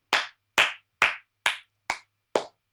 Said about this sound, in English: Means a lot that you're applauding me because I rate you. This is a standing ovation right now.